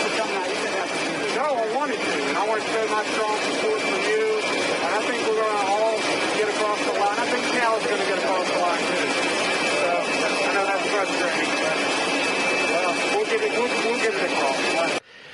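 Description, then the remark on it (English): Steady airplane engine roar with a high whine runs throughout, loud and constant beneath people talking, in a recording of North Carolina Governor Roy Cooper talking to Joe Biden, cutting off abruptly at the end. “You'll hear some airplane noise, but here it is.”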